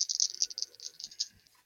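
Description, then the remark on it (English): A handful of five dice rattle and clatter in a rapid, uneven burst of bright, high-pitched clicks that fades slightly toward the end, with no voices. “Then roll that number of dice.”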